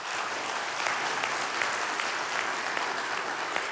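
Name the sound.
audience cheering and applauding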